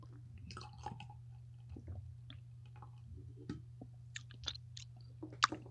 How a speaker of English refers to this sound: Well, I'm going to have another sip just to see if it's changed from a flavor profile. It still has bubbles in, which is fun.